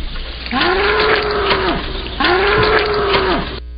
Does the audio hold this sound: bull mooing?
yes